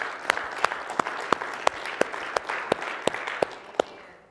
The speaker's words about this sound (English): Let's go ahead and give the Lord a hand clap, if you wouldn't mind, please.